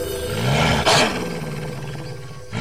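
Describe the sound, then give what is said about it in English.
A loud wolf roar, a deep rumbling snarl with a sharp burst of breathy intensity near the start, sustained for a couple of seconds before cutting off. No talking. “And I'm in a wild shape into my winter wolf because it's my go-to.”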